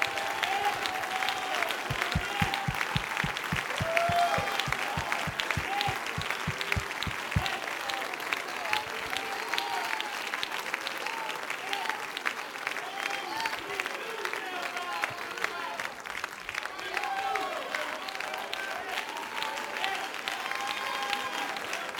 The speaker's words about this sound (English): You ought to stand on your feet, clap your hands in the name of Jesus.